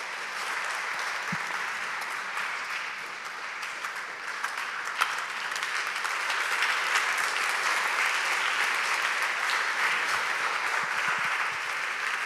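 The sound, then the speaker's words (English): Sustained applause from a large gathering, a dense, steady patter of many hands clapping like rain, continuing loudly for several seconds without pause. “Your clap is like it's raining.”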